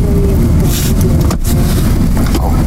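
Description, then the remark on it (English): A truck drives from the base toward a grizzly bear refuge, passing right beneath a gondola and a chairlift, with a steady, loud low rumble of engine and road noise heard from inside the vehicle, with no talking. “So as you can see, we're going to drive right beneath the gondola and the chairlift.”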